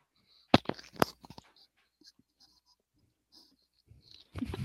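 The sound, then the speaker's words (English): Someone chewing food, with a cluster of loud, crunchy bursts early on, then a quiet stretch of faint mouth clicks and smacks, and another rough burst at the end. “She's chewing, y'all.”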